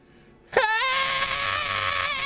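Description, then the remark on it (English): A voice imitates a character giving out a scream in the middle of a city: after a brief quiet start, a loud cry bursts out, sweeps upward in pitch, then holds as a steady, shrill, sustained wail to the end. “You know, just giving out a really good scream out in the middle of the city.”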